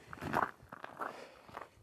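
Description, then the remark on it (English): Footsteps of someone walking the dogs outdoors: about four soft, crunchy steps in a steady, unhurried rhythm, fairly quiet, with no talking. “You know, I feel like I have these rambling trains of thought better when I'm walking.”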